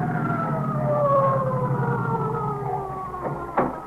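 emergency vehicle siren approaching

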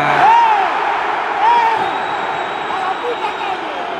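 football stadium crowd noise

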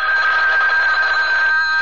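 telephone ringing

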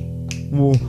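finger snap

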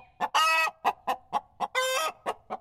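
chicken clucking

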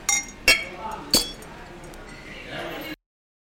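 glasses clinking

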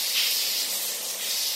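shower water spraying

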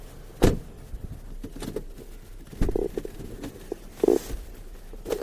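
car door closing

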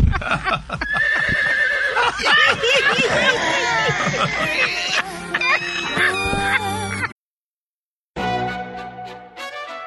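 horse neighing and whinnying

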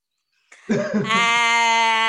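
donkey braying sound effect

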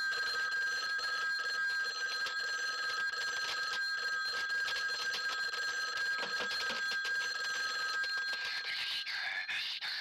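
telephone ringing

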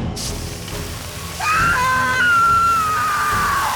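woman screaming in agony

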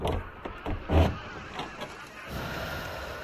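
doors opening

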